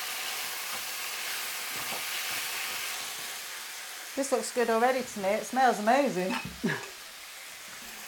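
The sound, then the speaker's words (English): A steady, hissing sizzle of spices and tomatoes frying in a pan, with a little water added so the spices don't burn, runs throughout, with a voice talking over it during the second half. “So you're going to add so that you don't want to burn the spices, and a little bit of water to it, so that the spices don't get burned.”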